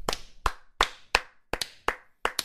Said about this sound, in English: Oh, we did it. I'm proud of us. Let's get a round of applause.